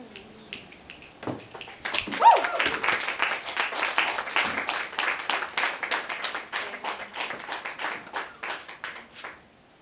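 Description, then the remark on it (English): An audience breaks into applause, many hands clapping in a dense, crackling burst that starts abruptly, holds steady for several seconds, then thins out with a few scattered claps. No voices. “So I also typically ask for an adverb to describe a round of applause and then question whether or not adverb is what I mean, and it is.”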